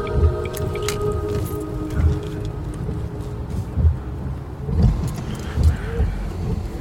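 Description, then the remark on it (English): Steady low rumble of road traffic with a droning engine hum at a major junction on the road in from Mellow, punctuated every second or so by heavier thuds and swells as vehicles pass. “And then the sound of traffic.”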